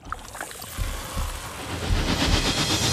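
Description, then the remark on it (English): A slurping sound effect from the film Terminator Genisys of a liquid-metal Terminator regenerating: a wet, gurgling slurp with bubbly splashes that swell into a louder, denser churning rush over about three seconds. No voices. “And Terminator Genisys has, or perhaps brings back, a slurping sound. Remember the old slurping sound that is essentially a liquid Terminator regenerating?”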